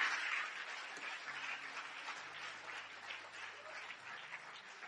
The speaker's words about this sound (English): Put your hands together for the Lord. Applaudissez pour le Seigneur.